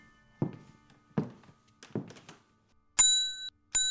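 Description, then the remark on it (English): Three heavy footsteps thud across a floor as a man walks over to a desk in a quiet house, then a small servant bell on the desk is struck twice, each ring sharp and bright with a short metallic sustain, fairly loud. “After a moment of waiting, he walks over to the desk and rings the servant bell.”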